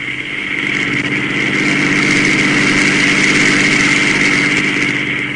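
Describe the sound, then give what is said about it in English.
A car engine hums steadily while driving home, a constant low droning rumble with a buzzy upper tone that holds an even loudness throughout, with no voices. “Marv and I were driving home, both of us very quiet.”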